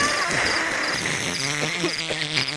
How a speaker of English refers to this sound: This is all I was doing. This is what I was playing while you were doing all that noise. I was playing crickets because it's funny because it's me who controls it.